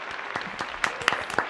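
A short burst of applause played as a birthday clap from a sound effect board, many hands clapping in a dense, crackling patter, moderately loud, with no voices over it.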